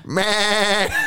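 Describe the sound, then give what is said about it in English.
A young girl, walking around, imitates a sheep, giving one sustained, wavering "baa" bleat, with a quivering tremolo through the held note before it breaks off. “She's just walking around doing sheep noises now instead of talking.”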